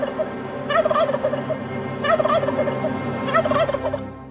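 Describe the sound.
A voice actor imitates a beady-eyed turkey, letting out three loud, rapid gobbling bursts at steady intervals, each a warbling rattle that rises and falls, with no other talking.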